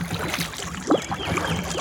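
A brief swirl and splash of a fish at the river surface, on a river past Bacon's Bridge Road, rising out of a steady wash of gentle lapping and trickling water, with no voices.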